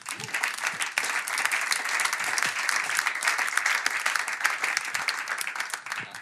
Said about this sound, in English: Well, I think that achievement alone deserves a round of applause.